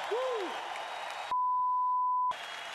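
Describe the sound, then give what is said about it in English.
A crowd at a boxing event claps and cheers loudly for the heavyweight champion of the world, with a short whoop at the start; a steady one-second electronic bleep abruptly cuts the applause midway before the clapping resumes. “So please give him a round of applause as our heavyweight champion of the world.”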